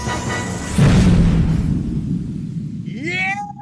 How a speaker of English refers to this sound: Bonus explosion.